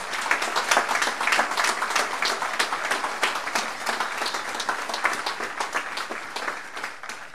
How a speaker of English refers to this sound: So if you don't mind, I would ask you to give a huge round of applause to that beautiful woman.